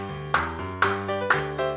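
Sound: hand clapping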